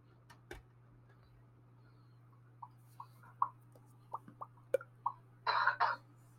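A single short, fairly loud cough near the end, preceded by a few faint clicks and taps over a steady low electrical hum; no one speaks.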